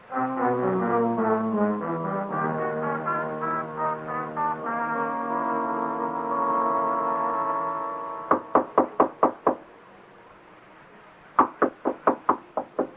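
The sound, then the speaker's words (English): A sustained, brassy musical chord fades out, then a firm knocking on Mr. Morsby's door: five quick raps, a pause, and four more, loud, with no talking. “I heard the knock on Mr. Morsby's door, so I thought I'd better tell you he's on holiday in Sussex.”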